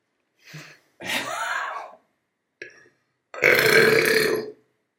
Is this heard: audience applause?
no